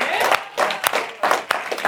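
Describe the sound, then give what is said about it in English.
An audience claps together in a dense, steady wash of applause, with a few sharper individual claps standing out and some voices mixed in underneath. “One class, we all clap.”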